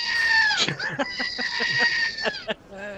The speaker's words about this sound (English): Time to move on. The screaming goat.